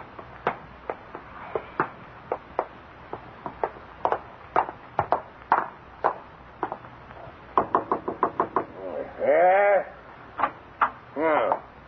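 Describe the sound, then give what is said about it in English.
Rapid, irregular knocking on a front door, sharp raps in quick bursts that speed up into a flurry, with a couple of wavering, bleat-like vocal sounds breaking in near the end. “Do I hear someone at the front door?”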